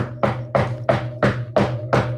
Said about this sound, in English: Yeah. I don't know if you could hear that. But that was me knocking on wood. He's knocking on wood. Very hard and very, very loudly.